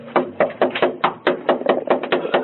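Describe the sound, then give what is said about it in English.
Police knock on the door of a man's apartment again and again, a quick uneven run of solid, fairly loud raps, with no voices. “They knock on his door.”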